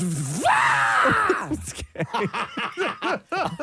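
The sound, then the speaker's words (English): A person lets out a loud, strained, goat-like yell that rises sharply and holds for about a second, then breaks into a run of rhythmic, choppy laughter bursts. “You sounded like one of those goats that yells like a man.”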